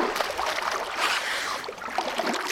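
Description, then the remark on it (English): Water splashes and sloshes steadily in a toilet bowl, a continuous bright, hissy churning with no voices. “Oh, splashing. This Todd's toilets are so clean.”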